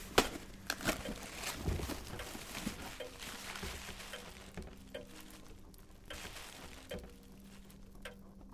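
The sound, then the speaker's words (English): A small box being opened with scissors: crinkling, rustling packaging and scattered sharp snips and clicks, fairly quiet and continuous over a low steady hum, with no talking. “There's another box. I see. Rather small, actually. You want the scissors again?”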